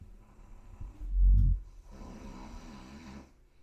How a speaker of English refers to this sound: Reason we chose our name, Nothing to Snore At, is because our entire background music is snoring. From our father.